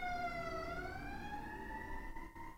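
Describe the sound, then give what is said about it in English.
An emergency vehicle siren wails steadily from outside, its tone dipping slightly and then slowly rising again, with a low traffic rumble underneath and no one speaking. “Editor Jay, make the sirens louder.”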